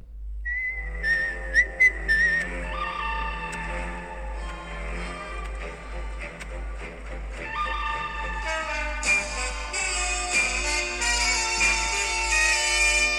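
A short segment jingle, started by pressing a button on a phone, opens with a high, whistle-like melody, then fills out with layered instruments, growing fuller and brighter toward the end. No one speaks over it.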